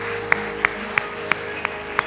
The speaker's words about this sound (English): Amen. Amen. Come on, you can clap.